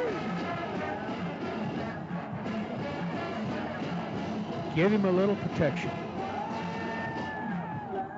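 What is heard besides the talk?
stadium crowd roaring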